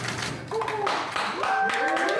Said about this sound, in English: The click of cameras and applause as the first COVID-19 vaccines were administered.